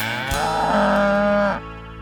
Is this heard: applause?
no